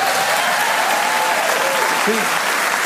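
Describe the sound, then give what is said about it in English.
Steady, dense applause from an audience at the mention of an album's record cover fills the whole clip, a continuous wash of many hands clapping at an even, fairly loud level with no pauses. “Even the cover gets applause.”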